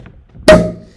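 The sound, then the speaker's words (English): A single sharp pop of a sparkling wine cork being released from a bottle kept in a fridge for a couple of months, a loud hollow burst that rings briefly and fades over half a second, with faint rustling before it. The cork is made of bits of natural cork pressed together. “But it's open now, and there's nothing we can do. The cork is rather lovely.”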